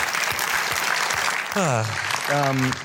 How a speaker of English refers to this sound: Speaking of Michelle Yeoh, she probably deserves a round of applause.